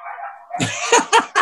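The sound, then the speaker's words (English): Dogs barking: a thin whine gives way to a rough burst, then three sharp, loud barks in quick succession, with no one talking. “It's not the neighbours mowing the lawn, it's dogs.”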